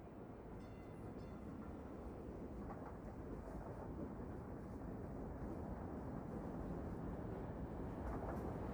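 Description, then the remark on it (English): A train rumbles steadily along the tracks, a dense, continuous low roar with faint clattering on top, loud throughout as if heard from inside a moving car. “Growing up in Brooklyn, Harry Seldon had been riding on trains his whole life. Or at least he thought he had. This thing he was in at the moment was more like a rolling Christmas tree.”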